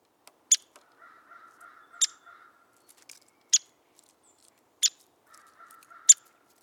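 Five sharp, high 'peek' calls of a downy woodpecker, evenly spaced about a second and a half apart, each short and crisp, with a faint low hum in the background and no talking.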